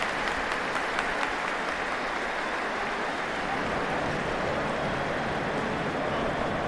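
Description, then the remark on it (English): A large stadium crowd applauds and cheers at the end of a football match in a dense, steady wash of noise that holds at a fairly even loudness, with a little dip at the end and no clear voices standing out. “A strange little dip at the end there from a crowd that I guess must be exhausted.”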